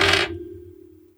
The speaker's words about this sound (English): I need you to roll plus cool. Oh, okay. Please, dice, please.